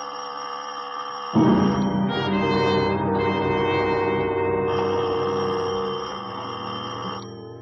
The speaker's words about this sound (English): doorbell. It stabbed the air of the quiet house like a knife blade.